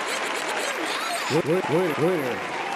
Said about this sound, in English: Give it up. Round of applause.